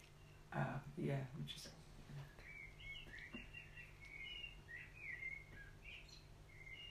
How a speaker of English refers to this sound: Yeah, I was just listening to the birds.